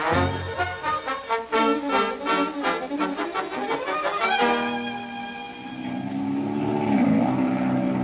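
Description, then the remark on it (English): A loud propeller plane engine drones in flight with a rich harmonic roar, surging in pulses at first, then settling into a steady hum that dips and rises in pitch as the plane maneuvers through a barrel roll. “Say, have you ever been up in a plane? No, why? I'll take you up out at the airport. We'll hire a ship.”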